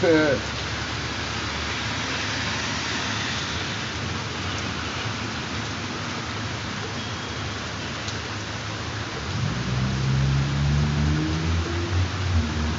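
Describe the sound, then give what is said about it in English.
A steady hiss like rain fills the background, then near the end a low, humming motor tone swells as an electric car pulls up. “Okay, the wife just pulls up now. She had a flashlight. She got an electric car.”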